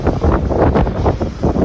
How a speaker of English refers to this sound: This was Sunday in Fort Lauderdale, where a tornado damaged homes and boats.